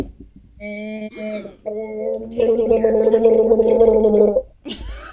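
A woman gargles alcohol in her throat, a wet bubbling drone that comes in two short bursts and then a longer, louder stretch, followed by a brief breathy sound.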